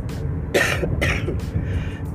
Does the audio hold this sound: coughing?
yes